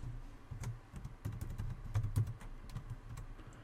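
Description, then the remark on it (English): Quick, uneven clicking of keys on a computer keyboard as a complex password is typed, a dozen or so keystrokes in bursts with brief pauses, with no voices. “Okay, go ahead and type in a complex password.”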